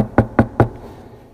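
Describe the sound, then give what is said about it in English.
Three quick, evenly spaced knocks on the door of a house by a visiting pastor, solid, followed by a quiet pause with no voices. “So he waits a little bit longer and he knocks again.”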